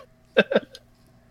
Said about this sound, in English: That was to punish Willie for his insolence. He had to have a fart button.